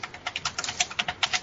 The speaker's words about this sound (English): He's rage typing. Yeah, that's right. He's writing his novel in between the shows.